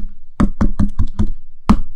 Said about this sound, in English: I'm gonna knock, right, okay?